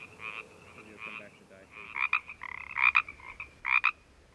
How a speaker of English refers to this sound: Carlos Davidson recorded these specific chorus frogs for ….